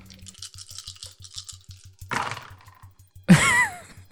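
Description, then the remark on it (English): A soft, rhythmic rattling of dice, including three yellow dice, shaken in a hand or cup, then a rush of tumbling and a sharp clatter as they land on a hard surface. “There are 3 blank dice in this roll, and they're all yellows.”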